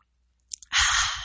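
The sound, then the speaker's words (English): A couple of soft mouth clicks are followed by a loud, airy slurp as someone takes a sip of a drink, with no talking. “Have a sip of your sangria or your wine or your champagne or whatever else you feel like drinking as you're listening to this podcast.”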